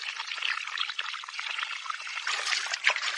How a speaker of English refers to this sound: Splash, splash, splash.